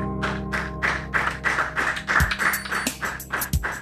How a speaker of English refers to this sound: I love all of us clapping for him.